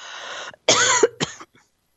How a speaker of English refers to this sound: Sorry about that. I coughed right on the microphone.